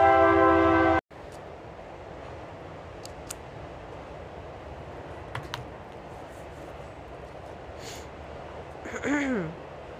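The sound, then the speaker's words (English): A loud, brief train horn blast opens, then gives way to the steady, rumbling roar of a train rolling past, with a short squealing tone near the end. “Of course, my train is coming, so I'm going to pause.”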